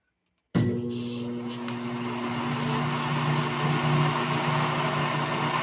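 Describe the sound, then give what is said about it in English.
A microwave oven switches on abruptly after a brief click and runs with a steady, loud electrical hum and whirring drone that continues unchanged, with no voices present. “Ah, there it is, a microwave.”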